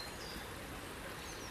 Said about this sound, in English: Listen to the birds, the river, your footsteps on the floor, the change of texture on the ground.